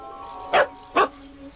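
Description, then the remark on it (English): Two sharp barks from a dog named Dog, being told to catch, spaced about half a second apart, standing out over a quiet background hum. “Dog, catch!”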